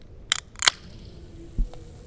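A can of Coca-Cola being cracked open: a sharp metallic click, then a brief bright hiss of escaping carbon dioxide fizz, followed moments later by a soft low thump.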